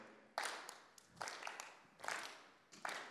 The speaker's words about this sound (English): We should get a clap going or something, shouldn't we? Nice and slow, not too fast. There you go.